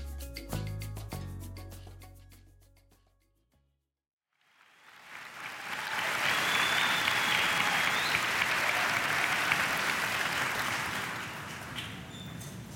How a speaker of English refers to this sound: You know, you got to let that applause sink in a little bit. Right? You know, seriously. Enjoy that.